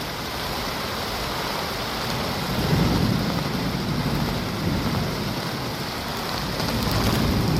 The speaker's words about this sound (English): Won't you shut the door? The rain's beating in.